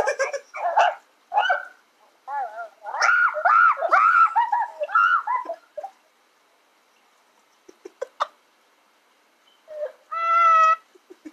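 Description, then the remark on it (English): A dog yowls and whines in a run of varied, pitch-bending vocal sounds, pauses with a few faint clicks, then lets out one more drawn-out, tonal howl. Fairly loud. “Your dog's just getting straight fucking bars right now.”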